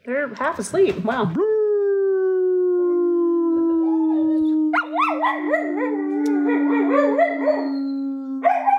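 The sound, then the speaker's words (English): Dogs howling loudly: a few short yips lead into one long, steady howl, then a second dog joins partway through and their wavering howls overlap until the end. “Did the dogs have anything they want to say?”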